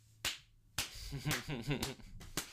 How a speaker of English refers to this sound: Give you the Shia LaBeouf clap.